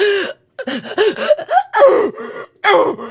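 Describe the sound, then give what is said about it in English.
A voice imitates loud sobbing and wailing done while crying in the shower: a string of strained, gasping cries with wavering, rising and falling pitch, broken by short catches of breath, about three seconds long. “Oh, were sobbing like out, like wailing? Oh, I was in the shower going like this.”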